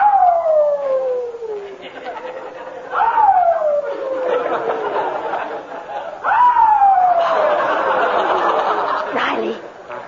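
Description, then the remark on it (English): A new puppy howls three times late at night in a garage, each a long, drawn-out wail that starts high and slides downward, with short breaths between them and a faint rustling background. “It seems the new puppy doesn't like his bed in the garage.”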